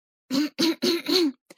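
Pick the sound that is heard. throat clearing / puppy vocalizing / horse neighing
throat clearing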